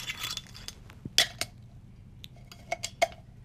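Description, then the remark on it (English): Jamaican rum pours into a glass, marked by several sharp glassy clinks and taps as the bottle knocks against the rim, with a soft splashing wash in between and no talking. “Let's have a little pour.”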